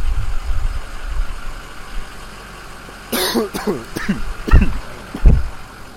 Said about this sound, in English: That exhaust was like super strong. Yeah, it was.